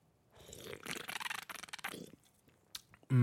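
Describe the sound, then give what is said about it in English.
Someone drinks LaCroix sparkling water from a can, with about two seconds of wet slurping and gulping mouth noises, a short sharp click, then an abrupt loud burst at the end. “So listen to me drink this LaCroix.”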